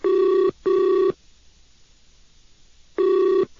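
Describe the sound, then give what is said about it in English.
A phone line rings out from the caller's end: two short tonal bursts, a pause of about two seconds, then another burst begins. The ringback is steady and clear, with no voices and nobody picking up. “I don't think he wants to answer the phone.”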